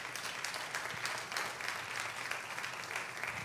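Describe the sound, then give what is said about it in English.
A church audience claps steadily for a few seconds as a clap offering to God for God's word during a sermon, a dense, continuous patter of many hands at an even loudness with no one speaking over it. “Can we give God a clap offering for God's word?”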